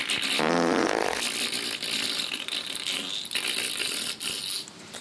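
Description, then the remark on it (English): A loud, buzzy fart with a rippling, rising tone rips out near the start, then trails into a long sputtering, rattly hiss that carries on to the end, in a bathroom at work. No one speaks. “Well, anyways, I'm, like, half asleep, walking into work, use the bathroom, and it's just a nice, perfect, like, beautiful fart.”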